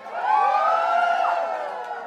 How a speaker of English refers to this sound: All right, good evening everyone. Welcome to Blue Chili Draft Performance. Cheering for our drag queens.